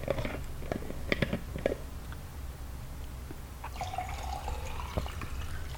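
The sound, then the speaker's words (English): Water sounds: a few sharp drips and splashes at first, then a steady trickling pour with a faint ringing tone, continuing at moderate volume with no talking. “More water here.”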